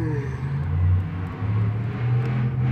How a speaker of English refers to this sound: Oh, it's the same truck from yesterday.